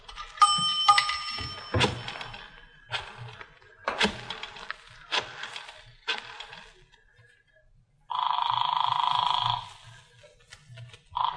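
A dime drops into the slot of a pay phone in a drugstore phone booth, setting off a bright metallic ring, followed by several clunks and clicks of the mechanism and a steady electronic tone near the end.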